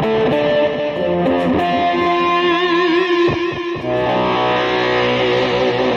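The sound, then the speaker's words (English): Guitar run through an Electro-Harmonix Micro Synthesizer pedal with delay, giving a buzzy, keyboard-like synth tone. Sustained notes shift in pitch with warbling, echoing layers, loud and steady, with no talking. “my micro synthesizer. That's what that is. That's why it kind of sounds like a keyboard.”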